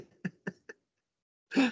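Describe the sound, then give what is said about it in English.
Three short, quick coughs in a row from a person who has been sick this week, followed after a brief pause by a longer, harsher throat clearing, all fairly loud with no talking. “Got a few laughs, but apologize for the coughing and the sniffling.”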